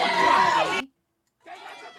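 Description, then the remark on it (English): A crowd of protesters yells loudly in a harsh, overlapping burst that cuts off abruptly, then after a short silence a fainter stretch of shouting resumes. “These are protesters yelling.”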